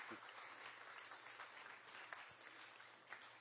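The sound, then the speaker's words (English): A crowd applauds steadily, many hands clapping in a dense, continuous wash of sound that stays fairly even throughout, with no voices standing out. “Please give them a big round of applause.”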